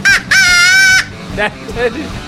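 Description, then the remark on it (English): Loud, harsh crow caws: a brief call, then a long drawn-out raspy caw, followed by two softer, shorter calls over a low murmur. “Number one, if crows come and they start doing that outside, then the recording is going to get all messed up.”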